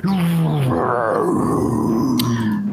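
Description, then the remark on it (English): A man's voice imitates a sea monster's roar over the waters, a deep, loud, sustained growl that wavers and rises for nearly three seconds, continuous with no other sounds. “And it makes just a roaring sound over the waters.”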